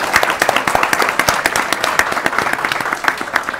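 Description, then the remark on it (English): A steady burst of applause from a group, many hands clapping densely and evenly at a close, fairly loud level for a few seconds, with no voices standing out. “First of all, that you're asking that question is amazing, and we applaud you for that.”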